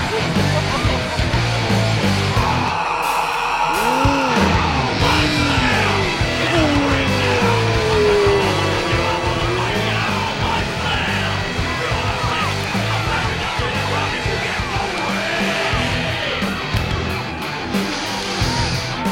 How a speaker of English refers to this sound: And boy, would you listen to the crowd!